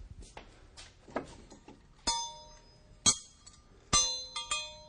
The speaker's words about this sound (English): We made a little schoolroom here. And this might represent a schoolroom in the valley. But anyway, there's some school bells.